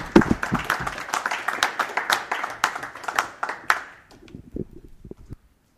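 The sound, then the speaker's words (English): Audience applause, the audience giving themselves a clap: dense, irregular hand claps for about four seconds, then thinning into a few scattered, quieter claps before falling silent. “So give yourselves a big clap on the back.”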